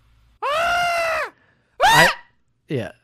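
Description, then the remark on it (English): A person's voice mimics the shriek of the legendary birds from the Pokemon movie three times: one long, sustained screech followed by two shorter, rising-and-falling cries, loud with brief silences between. “One, I love the way all three of the legendary birds shriek.”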